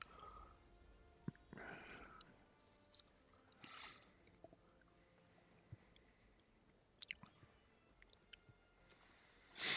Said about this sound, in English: Excuse me, I must chew. Must chew.